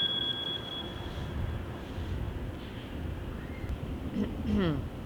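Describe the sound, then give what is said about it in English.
A phone notification beep: one steady, high-pitched tone sounding for about a second at the start, then fading out over a constant rumble of background noise. “What, sorry, that beep bothered me.”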